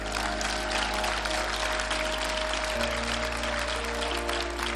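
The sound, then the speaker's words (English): Sustained crowd applause for the 2024 Homecoming Court and nominees fills the whole stretch, a dense, steady wash of clapping at an even loudness with a low constant hum underneath and no talking. “And let's give another round of applause to your entire 2024 Homecoming Court and nominees.”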